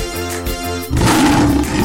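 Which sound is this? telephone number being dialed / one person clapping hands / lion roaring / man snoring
lion roaring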